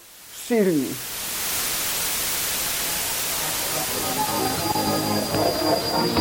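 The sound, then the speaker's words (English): Loud, steady Soviet radio jamming interference from a secret station in Georgia suppressing foreign broadcasts: a dense roaring hiss like a raging river fills the whole stretch, opening with a brief descending warble and later carrying faint wavering tones beneath the static. “When we failed to activate transmitters on time, that was when we could listen to some of the programming, but then our interference would follow. It was like the noise of a raging river, shh, but stronger.”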